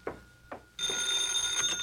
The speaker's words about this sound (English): Hey, how come you're answering the phone?